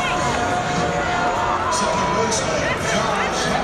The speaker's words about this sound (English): The crowd very frustrated with the lack of aggression by the base runners.